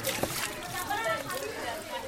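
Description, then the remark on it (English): Water runs and splashes steadily from a public faucet in a neighborhood as women wash dishes and clothes and fill buckets, a continuous wash of sound, with indistinct voices chattering in the background. “She and some younger kids from this neighborhood have gathered around a public faucet.”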